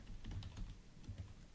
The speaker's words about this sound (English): Hey, I'm typing here.